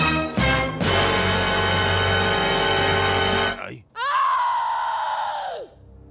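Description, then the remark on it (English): A loud, sustained scream rings out for several seconds, breaks off briefly, then returns as a second wavering, high-pitched shriek that trails downward and fades. “Oh, what was that noise? It sounded like a scream.”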